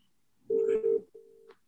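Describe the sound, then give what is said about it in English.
A phone call ringing out on the line: two steady, mid-pitched ring tones, the first slightly longer and louder, separated by a brief gap, with no voices. “Hey, if he's one of your best mates, and I know from experience he probably definitely is, give him a buzz.”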